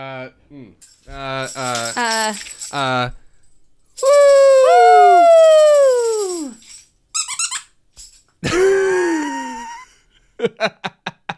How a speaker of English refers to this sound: Thank you to our dog for getting this squeaker out of one of his toys. So that you have a new idiophone.